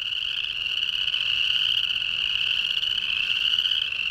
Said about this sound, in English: I recorded these chorus frogs in northern Utah at a big marsh near the Great Salt Lake. This is their spring mating ritual, and they gather together in an amorous frenzy of loud choruses.